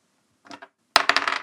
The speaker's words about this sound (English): So now you're rolling a D10.